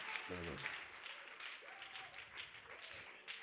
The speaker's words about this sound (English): Thank him by clapping him.